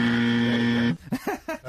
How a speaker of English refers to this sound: Well, I'm going to get the buzzer on this one.